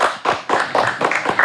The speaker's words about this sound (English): Clap that shit up.